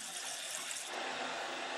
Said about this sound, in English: The deluge. Rain continues to pour down, and we see a lot of water falling off a large waterfall.